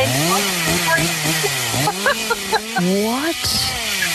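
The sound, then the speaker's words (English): A chainsaw engine revs up and down in continuous, wavering bursts, loud, with a brief voice speaking over it. “And while I'm watching it, sitting there in the dark watching it, and he got a real chainsaw, and he came bursting through the door at the same time as the guy did on the screen.”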